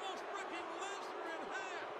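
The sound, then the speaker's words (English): A large arena crowd at WrestleMania boos Goldberg loudly and continuously during a match, a dense wall of jeering voices with scattered shouts rising above the steady roar. “Goldberg getting some booze here.”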